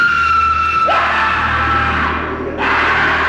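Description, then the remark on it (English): Two voices scream loudly over each other as the characters Carrie and Skinner, who is in a full skin suit, scream. One shrill, sustained shriek is joined by a second, harsher scream partway through, and the overlapping screaming carries on with a brief break near the end. “And Carrie screams. And Skinner screams, too.”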